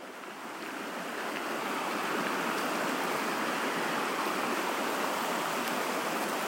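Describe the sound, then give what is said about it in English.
Fast-moving river rapids rush and gurgle steadily, a dense, continuous wash of sound that swells up in the first second and then holds at a constant, fairly loud level with no voices. “Just listen to that gurgle.”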